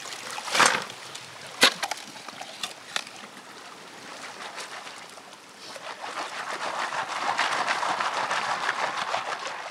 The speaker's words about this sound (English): He picks a river bend where the water would have likely deposited some of the heavy metal and starts digging.